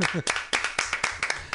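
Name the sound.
round of applause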